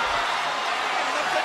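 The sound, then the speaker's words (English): A large wrestling arena crowd roars in a steady, dense wash of cheering and shouting, loud and sustained without a break, reacting during a ladder match between Jeff Hardy and The Undertaker. “Let's hear the crowd reacting here.”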